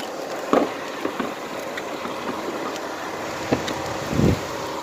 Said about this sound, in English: There's a big truck.